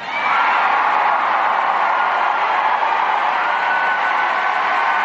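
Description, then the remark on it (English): A large crowd at a rally applauds and cheers loudly after a line about worshipping God. It is a dense, steady roar of clapping and whoops that holds at full volume for several seconds without letting up. “And did you hear that applause for the Almighty God?”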